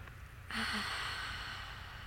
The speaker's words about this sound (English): She makes sure to walk past the sweetgrass and takes a big sniff.